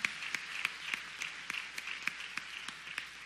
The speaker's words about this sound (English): Thank you all so much for being present. Let's give them another round of applause as they take their seat.